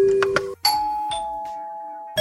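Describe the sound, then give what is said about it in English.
A doorbell rings out a ding-dong chime, a few bright bell tones struck in turn, each ringing on and slowly fading, clear with no voices, before another chime begins. “And finally, it's not only Halloween, but it's also, appropriately enough, I would say, National Doorbell Day.”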